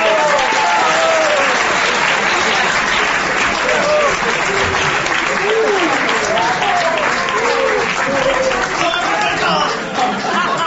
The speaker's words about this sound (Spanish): Un aplauso para